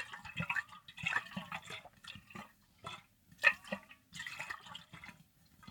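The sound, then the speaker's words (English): Water sloshes and splashes inside a closed Hydro Flask insulated bottle as it is shaken, in irregular bursts of liquid slaps and gurgles, with brief pauses between shakes. “I'm just going to like shake the water around and it'll make some like sloshing noises”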